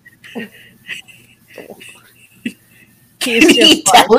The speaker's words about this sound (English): Can he tell you he's having an asthma attack? Oh, you can notice. What he's like coughing his lungs out over there, but I think he made it.